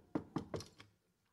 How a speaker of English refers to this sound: So the king sends Naaman, the leper, to Elisha. And what does Elisha do? He knocks on the door.